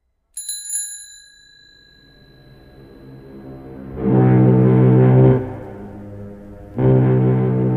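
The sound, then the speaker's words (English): A single bright bicycle bell ding rings out and fades slowly, followed later by two loud, low, droning blasts like a foghorn. “If a bicycle bell wanted to be a foghorn, it would have to learn to choose how it began its sound.”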